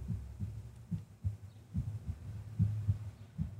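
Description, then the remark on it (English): A steady heartbeat thumps low and muffled, picked up by a microphone placed on a person's throat, pulsing in regular double beats over a faint hum with no voices. “You even have a remnant of the heartbeat on the recording because of where we put the mic on the throat.”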